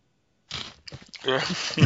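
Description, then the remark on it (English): Loud crunching and chewing of a crisp snack in irregular bursts during the Eurogamer PlayStation Show UK, with some muffled voice sounds mixed in near the end. “and I have with me, hopefully still munching on a crunchy,”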